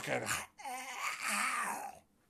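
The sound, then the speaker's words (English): A person's voice imitates an alligator with two loud, drawn-out, wavering guttural calls separated by a brief pause, the pitch sliding and trembling throughout. “That's not exactly what alligators sound like, I'm sure, but.”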